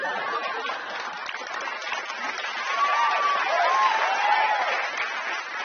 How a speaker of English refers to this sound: You don't have to clap every time I yell because I'm never going to stop.